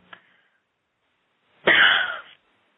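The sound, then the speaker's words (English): A loud, harsh burst of deep, deliberate coughing during a prayer session, lasting under a second and forceful, after a faint brief sound and a stretch of near silence. No one speaks. “Now take a deep cough and cough the rest of them out.”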